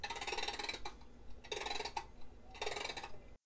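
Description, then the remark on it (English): A grandfather's wind-up clock's mechanism clicks rapidly in three fairly loud bursts, each under a second long, separated by short pauses. No one speaks. “It's a good thing I still have my grandfather's wind-up clock.”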